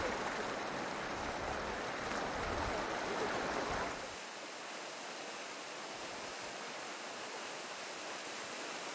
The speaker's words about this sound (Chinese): 咁今日我哋專登揸車，然之後咧再落咗車，再行上咗呢度，海拔都有成2000多米嘅一個地方，去到當地一個小瀑布。雖然係小瀑布，但係其實係Chatmon嘅一個喉音聖地嚟嘅。